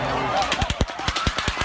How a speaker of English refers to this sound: In a matter of seconds, a country music festival turned tragic, a storm of gunfire raining down upon an innocent crowd.